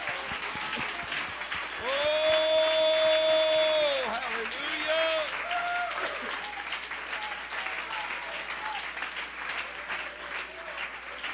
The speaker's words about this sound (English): Amen. If you feel that way, clap your hands to the Lord.